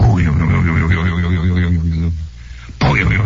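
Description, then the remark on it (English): A voice imitates the deep chimes of Big Ben, a giant clock tower, used as a radio station's identifying signature: long, sustained, loud humming tones, briefly dropping out before another tone starts. “or you'll hear the sound of giant chimes going.”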